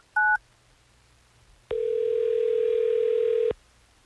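A single short keypad beep, then after a brief pause a loud, steady telephone ring tone that holds for nearly two seconds before cutting off abruptly, as the Hot 101.5 radio show places a call on air. No one speaks.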